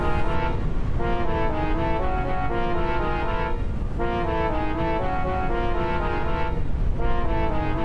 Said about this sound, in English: That's odd. The car's running.